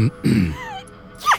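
A short, forceful sneeze bursts out after a quick catch of breath, followed by a faint whistling tone and a brief high squeak at the end. No one speaks.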